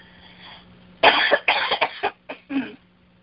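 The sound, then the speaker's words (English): A fit of harsh, sputtering coughs, about five bursts in quick, uneven succession, loud and raspy, the sound of someone choking on a sip of water. “Sorry, excuse me. I took a sip of water and went down.”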